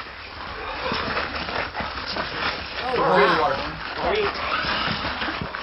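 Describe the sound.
A woman growls and hisses in a harsh, raspy voice while people try to restrain her, swelling loudest midway, amid a busy, noisy scene with other people talking.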